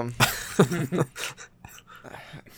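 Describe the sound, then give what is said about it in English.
A dog barks, three or four quick, sharp barks in a short burst, somewhat muffled, with no talking over them. “Your dog okay”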